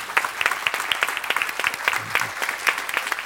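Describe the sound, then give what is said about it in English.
A church audience applauds steadily, many hands clapping in a dense, rapid patter, with no voices standing out above it. “Part of the, yeah, you can clap. That's amazing.”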